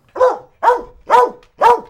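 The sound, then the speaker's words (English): A dog barks four times in a steady, evenly spaced rhythm, each bark loud and sharp, with brief silences between them and no voices. “Okay, well, not just people being safe, but dogs too.”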